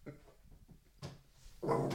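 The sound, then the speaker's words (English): A dog named Lily lets out a loud bark near the end, after a sharper short yelp midway, with faint murmuring voices in the background. “I think the dog Lily, feels threatened.”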